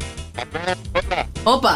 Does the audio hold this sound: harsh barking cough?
no